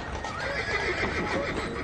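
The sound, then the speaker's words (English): A horse whinnies with a wavering, drawn-out call over a steady background of hooves clip-clopping, fairly loud, for about two seconds, with no talking. “Cows, pigs, and packs of stray dogs roamed freely in the streets, while thousands of overworked horses powered the Industrial Revolution.”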